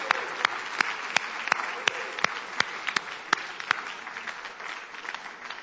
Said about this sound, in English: 50, come on, give these people a round of applause.